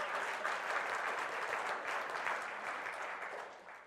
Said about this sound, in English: Yeah, sure, you can clap for that. Praise the Lord.